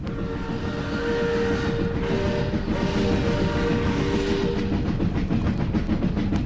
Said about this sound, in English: Before he could answer, there was a vibration in the earth which quickly turned into a violent pulsation as a train roared out of the tunnel.